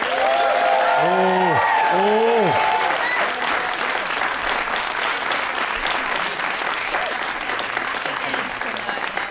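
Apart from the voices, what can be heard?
audience applauding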